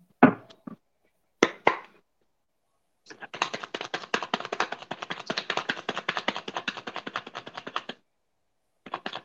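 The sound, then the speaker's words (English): A deck of tarot cards being shuffled: a few sharp taps and card knocks, then about five seconds of rapid, crisp fluttering clicks from a riffle, with another burst starting at the end. No talking. “Somebody used to work in the casino the way they shuffle.”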